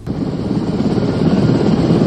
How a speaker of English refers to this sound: In the background here at the Murfreesboro Airport, you're obviously going to hear the helicopters taking off with the governor and deputy governor and TEMA officials, along with Senator Bill Ketron